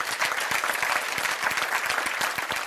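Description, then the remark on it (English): A church audience applauds steadily and vigorously, dense overlapping claps forming a sustained, fairly loud roar of clapping with no voices standing out. “I think you can clap better than that.”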